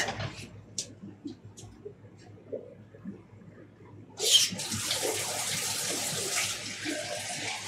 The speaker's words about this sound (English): I need 10 seconds. I got to fill this thing with water or I'm not going to get much speaking done. My voice is kind of dry.